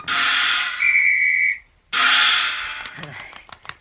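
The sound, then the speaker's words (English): A seal blows a shrill, steady whistle blast lasting under a second during a ball-balancing trick, rising over a loud rushing hiss, followed by another burst of hiss and scattered clicks and thumps. “I toss this ball high into the air, turn a somersault, blow a whistle, and catch it on my nose.”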